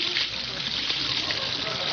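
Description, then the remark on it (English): Water runs steadily from a tap, a continuous hissing, splashing stream filling a hot water bottle without pause; the water is not very hot. “Bertie must have used it all up washing the dishes.”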